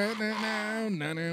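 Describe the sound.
A voice imitates the horn part of a ska album track, holding one loud, buzzy, brassy note before sliding down to a lower pitch, all within about a second and a half.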